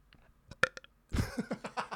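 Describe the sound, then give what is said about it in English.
A few quiet clicks and sharp little bursts, then a loud, drawn-out burp by a woman right into the microphone, croaking in uneven pulses for nearly a second. “Is that not polite for me as a woman to burp into the mic?”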